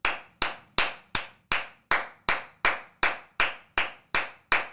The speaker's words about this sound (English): Everybody clap it up. Everybody sitting behind your screen. Everybody walking on a treadmill. Walking your dog. On the bench press.